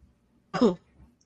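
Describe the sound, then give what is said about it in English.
One short, throaty cough, a single quick burst with quiet on either side and no talking. “And me coughing is why she”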